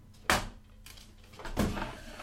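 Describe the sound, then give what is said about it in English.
A wooden drawer in a room slides open with a sharp scrape and knock as someone rifles through it, followed by softer rattling and shuffling of its contents, pens and markers, and a second bump. “I could go rifling through his drawers.”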